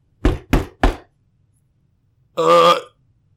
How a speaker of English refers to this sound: And then the world goes dark. And you hear a knocking sound.